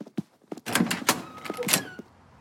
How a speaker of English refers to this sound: I'll close the door so the squirrel doesn't run inside.